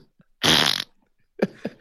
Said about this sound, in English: I just cut a big juicy fart.